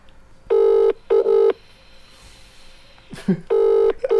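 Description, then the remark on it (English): The ringback tone of an unanswered call to a Vodafone mobile phone purrs in a double-ring pattern: two short buzzing pulses, a pause of about two seconds, then the pair starts again. It is clear and steady, with a brief rustle before the second pair. “Do you reckon you'll hear that ringing?”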